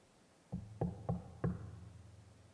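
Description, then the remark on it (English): Four firm knocks on a wooden door, evenly spaced with a slight pause before the last, fairly loud, with a low resonant thud after each rap. No one speaks. “And he's knocking.”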